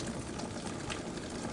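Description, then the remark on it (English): A steady stream of water pours continuously into a blender of beets being pureed with red wine vinegar and salt, producing an even splashing rush with no voices. “You can add a little bit of water just to help keep things moving.”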